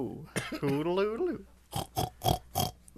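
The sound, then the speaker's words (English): A person imitates a pig: a squealing, warbling vocal sweep, then a quick series of four or five rough, rhythmic oinking grunts, fairly loud. “I mean, that was a pig.”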